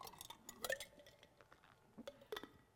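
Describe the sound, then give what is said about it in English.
Ice cubes clink and rattle inside a water bottle as someone drinks, with a few bright, sharp knocks clustered near the start and again toward the end, fairly quiet. “Sorry, I'm thirsty and there was ice in there.”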